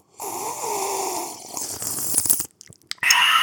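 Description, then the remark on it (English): A noisy slurping sip of apple pie moonshine, a sustained airy draw followed by crackly gulping sounds, a brief pause, then another loud burst of slurping. “I'm taking a sip. Oh, by the way, we drinking moonshine. Apple pie.”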